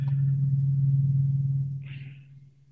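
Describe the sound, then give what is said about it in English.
A deep, steady rumble of thunder rolls on for a couple of seconds and then slowly fades, heard alone with no voices. “A giant like thunder thing just sounded, and with all the flooding, it like kind of freaked me out a little bit for a moment.”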